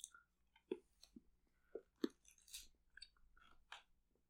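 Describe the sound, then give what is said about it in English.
Wet chewing of a milk chocolate bar, with soft irregular bites and smacking mouth sounds over a few seconds, no talking, a low steady hum beneath. “Last one. Milk chocolate.”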